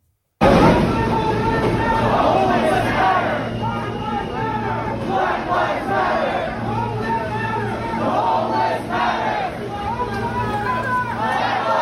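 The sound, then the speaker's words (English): A large crowd of protesters in a subway chants "Black Lives Matter" and "the homeless matter" loudly and continuously, many voices rising and falling together over a steady low hum, with shouts overlapping throughout. “Protesters took to the subway tonight chanting Black Lives Matter and the homeless matter.”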